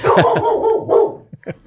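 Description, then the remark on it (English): A dog barks loudly, a drawn-out, wavering bark running for about a second, then a few short, sharper barks trailing off after a brief pause. “Not even my dog liked that joke.”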